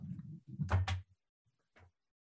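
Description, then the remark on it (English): A door swings and shuts with a pair of solid thumps and a brief rattle, then a quieter knock follows after a short pause. “Shut my door here.”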